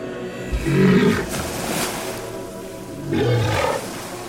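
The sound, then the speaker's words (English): An elephant seal, Sea Elephant 3021 from the South Atlantic, lets out two deep, guttural bellowing roars, loud, separated by a short pause of low rumbling background noise. “Our first lesson comes in the form of Sea Elephant 3021.”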